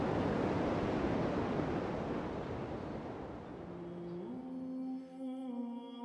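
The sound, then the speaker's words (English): Violent waves of the open sea roar in a loud, continuous wash of surf that slowly eases. Partway through, a sustained tonal drone rises beneath the crashing water. “The violent sea holds no quarter or peace.”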